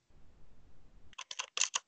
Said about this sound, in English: God, you destroy that keyboard.